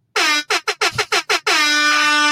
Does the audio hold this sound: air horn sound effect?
yes